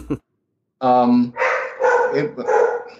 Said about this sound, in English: His dog disagrees. Luna disagrees.